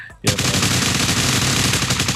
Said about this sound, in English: This one on the ground in front of the machine gun, you just hear clack, clack. Can I get a mowing down everyone in the opposite room sound effect,